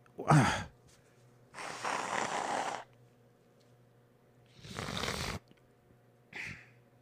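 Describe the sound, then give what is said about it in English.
Someone blows their nose in four rough, breathy bursts: a short sharp honk, a long loud blow, another strong blow, then a brief softer snort. No one speaks. “Had to blow my nose.”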